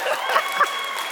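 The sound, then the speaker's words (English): An audience at a church service yelling and cheering together, people who had commuted 45 minutes to the service, a steady wash of overlapping voices with a couple of brief, sharper shouts rising above the din. “All the people yelling and screaming just commuted 45 minutes to this service today.”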